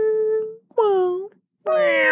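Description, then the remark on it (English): A person imitates a cat's meow three times, with pauses between: drawn-out, nasal, falling-pitch calls, the last one loudest and brightest. “But you sound like a human making a cat noise.”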